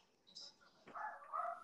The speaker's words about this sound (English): My dogs are barking. Yeah, I hear a little dog.